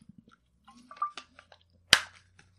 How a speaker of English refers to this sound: Let me get a little sip of water in here.